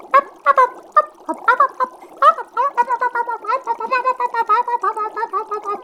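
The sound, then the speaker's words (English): Thick, gurgling bubbling of pink sludge churns steadily in quick, uneven pops, fairly loud, with a wet, throaty quality that swells and repeats throughout without pause. “Then, bubbling. Slowly, fallen emerge from the pink sludge as their shouts grow louder.”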